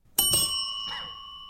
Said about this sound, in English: And that was two bells at once. Two bells.